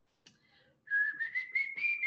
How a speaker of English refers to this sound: Oh, I can't whistle either. I'm gonna get copyright struck.